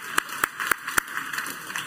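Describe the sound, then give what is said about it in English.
A handful of sharp handclaps, roughly evenly spaced, four crisp ones then a couple of softer, scattered claps trailing off. It's thin, brief applause with no talking over it. “Come on, applaud. Come on.”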